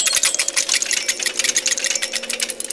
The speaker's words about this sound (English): The colours change, but unlike before, the sound doesn't make a snap freeze sound. It makes a sort of almost like an unlocking of like mechanisms noise.